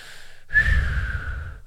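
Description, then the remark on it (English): A single long exhale blown out through pursed lips in a pursed lip breathing breathwork demonstration, a breathy, slightly whistling rush of air lasting about a second, with no talking. “So the number one breathwork methodology for clearing energy, moving energy throughout your chakras is pursed lip breathing.”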